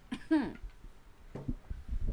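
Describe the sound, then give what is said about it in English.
A person coughs from a very fizzy, super carbonated drink: a rough, strained cough with a falling voiced tail, then a few shorter, quieter hacking bursts about a second later. “It is so fizzy. It is making me cough.”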